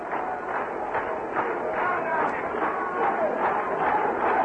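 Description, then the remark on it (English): A ballpark crowd in San Diego claps in unison during a baseball game against the Giants, a steady rhythmic beat of roughly two claps per second that carries through the whole stretch over a constant wash of crowd noise. “And a good crowd here in San Diego tonight. Start their rhythmic applause designed to upset the pitcher and encourage the home club.”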